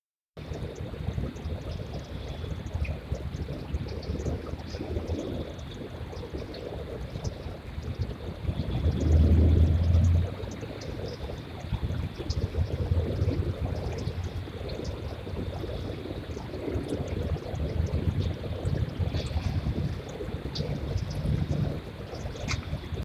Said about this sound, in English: Yeah, this definitely had like the rumble of a muscle car behind right. it.